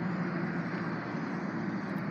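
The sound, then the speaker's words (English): A cherry red Chevrolet's engine rumbles across the street, a steady low drone with a constant hum and no clear rises in pitch, holding at an even loudness throughout with no voices. “Nice cherry red Chevrolet across the street. Rev those engines.”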